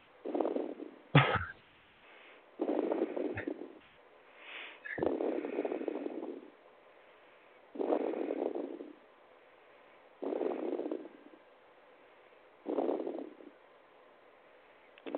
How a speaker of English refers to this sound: Okay. Somebody breathing heavy. That's just a shortness of the microphone we're picking up from whoever that is trying to connect in there.